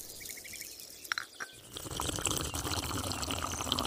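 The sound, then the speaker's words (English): Glowing berries plop into hot water to make tea, with two quick splashes, followed by a steady rush of bubbling, pouring liquid; a few faint high chirps sound at the start, with no talking. “Let's plop them in hot water and take a sip.”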